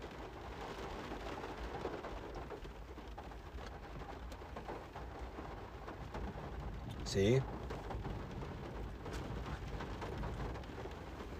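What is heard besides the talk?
rolling thunder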